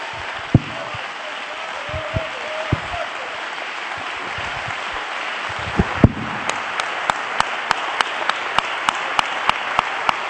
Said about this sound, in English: Ah, you ought to clap your hands unto the Lord.